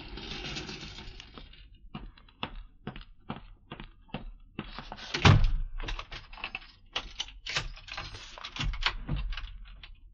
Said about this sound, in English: Well, here's the elevator.